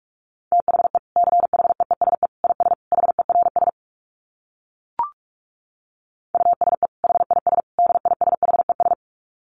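Rapid Morse code dits at 45 words per minute, keyed on a steady mid-pitched tone, fired in two fast bursts separated by a few seconds of silence and a single soft click.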